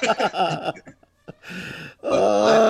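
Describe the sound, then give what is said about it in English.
A voice mimics loud, exaggerated cartoon snoring in the style of Fred Flintstone: rough groaning rumbles, a short pause, a raspy snorting inhale, then a strong drawn-out vocal snore, all forceful. “So I was full on Fred Flintstone snoring.”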